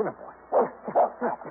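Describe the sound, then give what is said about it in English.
A puppy yips and whimpers, a handful of short, high, strained cries in quick uneven succession with brief quiet gaps between them. “This pup really deserves the credit.”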